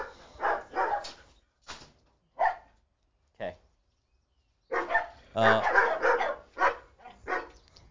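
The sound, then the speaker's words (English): A dog barks in a loose series of sharp bursts, sparse and spaced at first, then a quicker, busier run of barks toward the end. “That's what I say to dogs when they're barking.”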